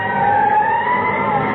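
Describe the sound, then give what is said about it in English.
A fire engine siren sound effect wails loudly and continuously, its tone holding steady with a slight upward slide in pitch and no voices over it. “He's a three-alarm fire and a fire chief too.”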